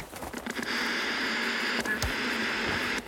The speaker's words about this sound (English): I kept turning. White noise. More white noise.